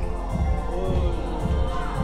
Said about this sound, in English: The groom just walked in. Everyone's kind of applauding. There's kind of some hip music being played right now.